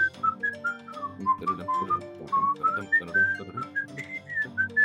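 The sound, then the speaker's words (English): A person whistles a theme song, a bouncy, wandering melody, the bright tone sliding between notes in short phrases over a low steady background hum, with no one talking. “That was the theme song. Whatever, I have a whistle like an angel.”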